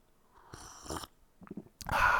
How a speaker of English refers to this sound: I'm going to have a sip of tea.